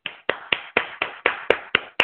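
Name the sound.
one person clapping hands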